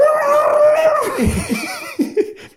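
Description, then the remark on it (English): A voice imitates a long, strained scream into a bong that sounds muffled and hollow, sustained and then sliding downward, followed by two short gasping bursts. Fairly loud, with no other sounds around it. “And then he screams into the bong.”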